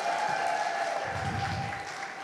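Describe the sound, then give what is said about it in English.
A crowd applauds steadily, a dense wash of many hands clapping at once, fairly loud and continuous throughout, with a low rumble of movement joining in partway through. “Keep clapping.”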